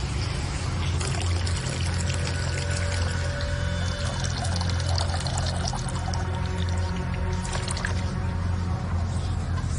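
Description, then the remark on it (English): Water runs steadily throughout, a continuous pouring, splashing wash over a low, droning rumble, consistent in loudness from start to finish. “I hear water running.”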